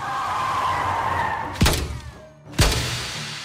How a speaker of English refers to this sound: He was about to shoot as I slammed on the brakes.